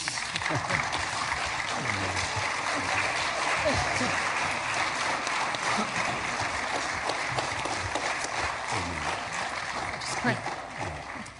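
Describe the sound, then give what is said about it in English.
A large crowd, standing for a quick clap break, claps steadily, a dense, continuous wash of applause at constant loudness that fades slightly at the very end, with faint voices mixed in underneath. “Well, why don't we stand, take a quick clap break.”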